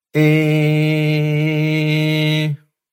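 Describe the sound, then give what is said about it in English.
A voice imitates the second of an ambulance's three siren sounds with one loud, steady, buzzing tone held at a flat low-mid pitch for about two and a half seconds, without any rise or fall, then stops abruptly. “Ambulance sound two.”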